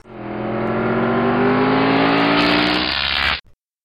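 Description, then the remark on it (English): A DeLorean car engine revs loudly and accelerates away, its pitch climbing steadily for about three seconds before cutting off abruptly. No voices. “Quick, get in the car with the dog. Is that a DeLorean?”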